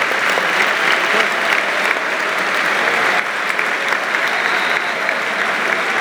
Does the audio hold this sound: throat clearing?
no